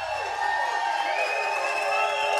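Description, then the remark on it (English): A dense, steady roar of a red and rowdy crowd cheering without pause at the Chiefs Kingdom Show on a Monday night at the Nolan Road Hy-Vee location, loud and continuous, with bright hissing texture and a few sustained tones running through it. “We have a red and rowdy and raucous crowd here tonight.”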